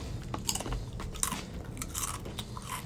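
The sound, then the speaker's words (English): Crunchy Cheez-It crackers being chewed, with repeated crisp bites and brittle cracking bursts over about three seconds, fairly loud and steady with no talking. “I'm sorry, viewers, but I must open these Cheez-It grooves.”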